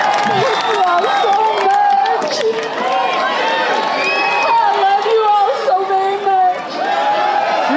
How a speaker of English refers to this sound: Jail, cheered by a crowd of supporters.